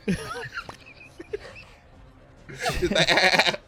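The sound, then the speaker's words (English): A person imitates a sheep's bleat with a quavering nasal voice, first briefly, then after a pause in a louder, longer, strained baa. “I like the idea of this dude just, like, hitting this other dude so hard that you just pop into a sheep.”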